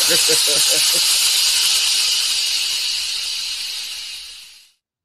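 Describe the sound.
A loud, steady hiss of escaping steam runs for several seconds, briefly overlapped by a voice at the start, then tapers slightly before cutting off abruptly.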